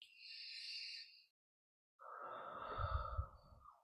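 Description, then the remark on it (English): A slow, airy inhale, a short silent pause, then a deep, louder breathy exhale with a soft rumble, as breathing begins a tapping exercise; no one speaks. “So we begin by just breathing.”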